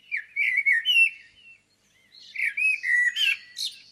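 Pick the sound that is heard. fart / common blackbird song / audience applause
common blackbird song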